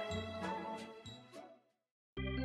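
A bell is struck about five times in quick succession, bright metallic tones ringing and layering before fading to silence; a loud, sustained tone then starts abruptly at the end.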